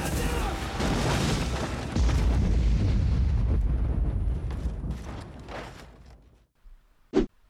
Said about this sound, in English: and the shots start going off, and shit hits the fan, and somebody takes a C4 charge and throws it down there, and kaboom, gigantic explosion.